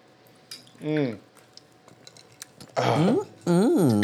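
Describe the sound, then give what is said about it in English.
Someone sputters and chokes after taking a shot of whiskey during a toast: three strained, throaty vocal bursts, the last two louder and longer, with faint clinks and small wet sounds between them. “Well, I just heard you choking a little bit over there.”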